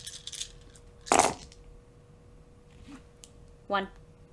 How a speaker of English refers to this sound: One success. Just the biggest, like, I only have like 2 extra dice hanging out here after that roll, but I get one.